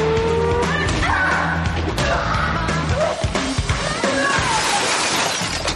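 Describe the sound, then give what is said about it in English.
A loud, busy car chase from the TV series Chuck, with Casey on top of the Nerd Herder car: revving engines and squealing tires mixed with crashes and shattering glass, the action dense and continuous throughout. “Casey jumps on the top of the Nerd Herder as Chuck gives chase.”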